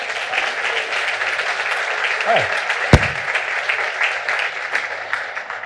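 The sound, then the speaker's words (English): A church audience claps for mothers, a steady, dense, sustained wash of applause for several seconds, with one brief sharper crack partway through and no clear talking over it. “Even not because you guys have been clapping since then, I said she clap again for mothers, right?”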